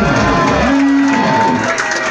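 A crowd cheers in a loud, steady roar of many voices blending together, with a brief higher shout or whistle rising out of the din partway through.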